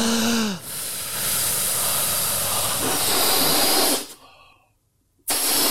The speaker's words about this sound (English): First of all, I've got to blow up a balloon.